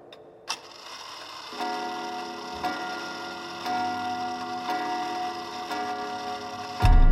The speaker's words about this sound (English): The old clock chimed 6 times.